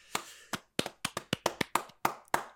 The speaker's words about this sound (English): Clapping.